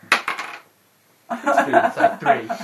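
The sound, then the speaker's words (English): Dice clatter and tumble briefly across a hard table, a quick rattle of small clicks that stops abruptly. After a short silence, voices start talking. “Let's see if you roll a one.”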